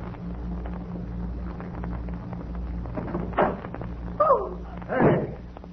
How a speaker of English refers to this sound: Are you sure you have the pass key? Yeah, here it is. Let's go over. This way. Come in. I'll open the door.